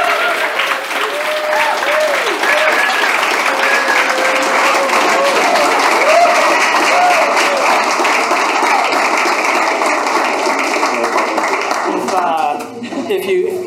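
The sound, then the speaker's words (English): A crowd of about 9,500 people in a room at the second annual animal-based retreat in Santa Teresa, Costa Rica cheers and applauds steadily, dense clapping mixed with scattered whoops and shouts, loud throughout before easing slightly near the end. “Let's do a little whoop for the crowd so everybody listening.”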